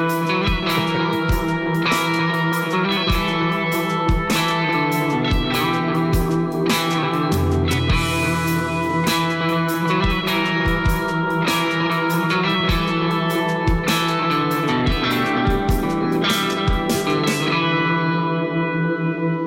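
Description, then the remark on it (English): An electric guitar plays a steady, rhythmic pattern through an Alexander Amnesia effects pedal, its notes washed in echo, modulation and light distortion, with repeating plucked attacks and a sustained wash that trails off at the end. “No, that is my demo of the Alexander Amnesia.”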